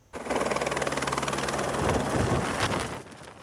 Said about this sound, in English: A helicopter picking up a crew doing maintenance on a radio and weather station high above Highway 37 in northwestern BC. Watch closely. The helicopter lands within 2 meters of the technicians.